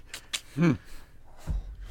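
Heavy breaths come in short, airy bursts, one catching into a brief voiced gasp, followed by another rough exhale a moment later.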